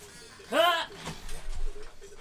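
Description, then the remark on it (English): A loud creak as a broken chair gives way and its back pulls loose, followed by a short clatter and some faint shuffling. “Yeah, the back comes out, and it's not good.”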